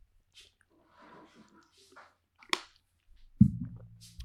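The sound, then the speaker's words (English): A person takes a swig of water: soft breathy, wet mouth sounds, one sharp gulp-like click, then a low, resonant clunk that rings briefly. No one speaks. “I'm going to have a swig of water, guys.”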